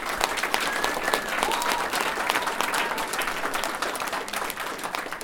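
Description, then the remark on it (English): An audience applauds four award candidates steadily for several seconds, a dense wash of many hands clapping at an even loudness, with a few faint whistles rising above it early on. “Let me give them one last round of applause.”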